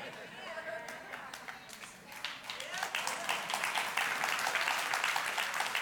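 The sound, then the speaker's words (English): An audience bursts into applause, many hands clapping in a dense, crackling wash that starts scattered and swells louder, steady and sustained through the end. “I don't know what you're clapping about, but let's not let that happen.”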